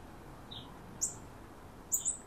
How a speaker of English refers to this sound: And oh, there's a cardinal. That one bright chirp, chirp, chirp. That's a cardinal.